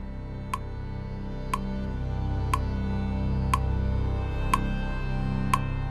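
A clock ticks steadily, six crisp, evenly spaced clicks about one second apart, sounding over a low, murmuring background drone with no one speaking.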